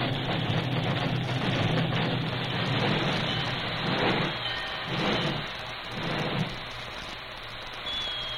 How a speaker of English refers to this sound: He backed the work engine almost to the siding before he brought it hissing and squealing to a standstill.